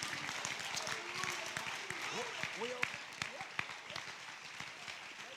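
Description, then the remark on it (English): A church audience claps their hands in praise to the Lord, with many sharp, irregular hand claps forming a steady patter, mixed with scattered shouting voices. “If you believe that, clap your hands to the Lord and give the Lord all the praise you can.”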